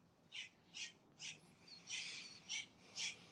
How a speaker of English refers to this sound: Tell me, what's that noise? What is that? Where you at, bird?